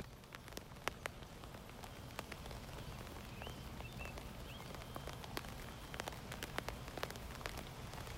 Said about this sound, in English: Rain is romantic. It's refreshing. It's the excuse you need to stay indoors curled up with a good book. It's the whispering lullaby that helps you fall asleep even during such a restless time.